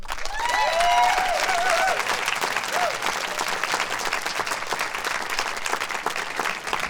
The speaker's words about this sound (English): maybe one final round of applause for all of our storytellers of the evening.